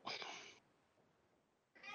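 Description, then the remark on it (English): Two loud meows from hungry cats that have not been fed yet, one at the start and another near the end, separated by a quiet pause, with no talking. “Cats are mewling because they've not been fed yet.”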